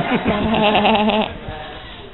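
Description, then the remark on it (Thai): A single long, wavering bleat like a sheep's baa, lasting about a second and fairly loud. It sounds like a human voice imitating the bleat, followed by a faint low trailing note. “เราจะเป็นหมาป่า Or we can be sheep. หรือเราจะเป็นลูกแกะ แบ”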